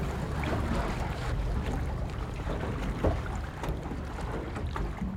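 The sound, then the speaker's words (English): A research boat moves across open water on Utah Lake, its steady low engine rumble and churning water filling the scene, with occasional soft knocks and splashes and a breath of wind. “He graciously took us out on Utah Lake in his research boat as we were first dipping our toes into this whole matter.”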